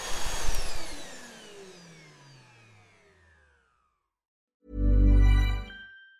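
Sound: vacuum cleaner running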